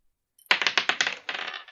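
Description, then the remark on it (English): A d20 die, rolled for a ranged attack roll in a tabletop game, clatters across a hard table in a quick burst of sharp, bright ticks that bounce and tumble, briefly pause, then rattle again before settling on a natural 1. No voices. “Give me a range attack roll. What is that? Yeah, d20 plus dex.”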